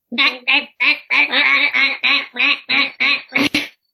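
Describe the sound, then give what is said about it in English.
About ten loud, nasal duck quacks in a quick, steady series, apparently a person's voice imitating a duck, with no other speech or background sound. “Is this a duck attack roll?”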